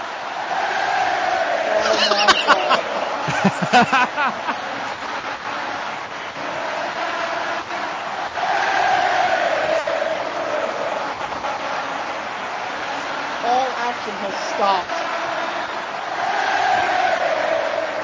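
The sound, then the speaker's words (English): A wrestling crowd at a WWF event roars and cheers loudly and continuously as Brock Lesnar is eliminated by Bryan Danielson, with rhythmic swells like chanting and bursts of clapping near the start, the noise filling the whole space. “The crowd now break into.”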